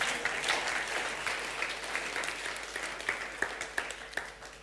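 An audience applauds steadily, a dense wash of many hands clapping that thins slightly toward the end, with a few sharper individual claps standing out.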